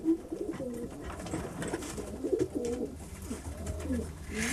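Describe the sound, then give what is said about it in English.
Pigeons coo in overlapping low, throaty rolls, several birds murmuring continuously over a soft background rustle and hum, with a brief brighter noise near the end. “She puts out a bag of birdseed for me every afternoon when she goes to feed hers.”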